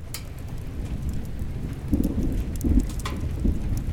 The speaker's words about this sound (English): What a storm! It must be the biggest storm ever!